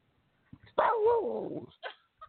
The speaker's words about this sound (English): Did you hear him? You didn't hear him? He just barked and howled into the headset for you. Ring the doorbell, knock on the wall. I said treat like 10 times, and so he barked and howled for you. He said hi to y'all.